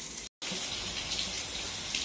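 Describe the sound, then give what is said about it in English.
Shower water runs in a steady, full hiss, broken only by a brief cut to silence near the start before the spray resumes. No one speaks. “This is Cold Shower Talk. I'm about to jump in”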